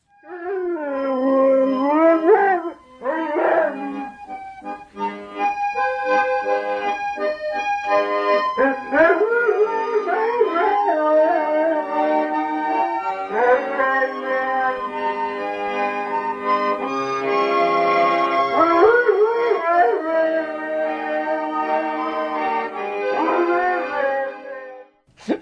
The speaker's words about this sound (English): his dog Nippy, who just took up sort of singing on his own initiative.